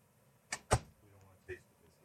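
A door is pushed shut: a quick click and then a solid, heavy thud, followed by a brief faint sound amid quiet.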